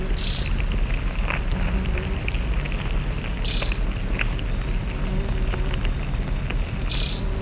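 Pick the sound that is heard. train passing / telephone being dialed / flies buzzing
flies buzzing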